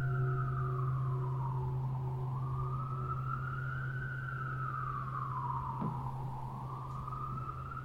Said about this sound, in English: I'm touched, constantly touched. You hear a siren. It's touching. You cannot not be touched, you know, either at the ear door, at the heart door.